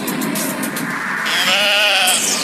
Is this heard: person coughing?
no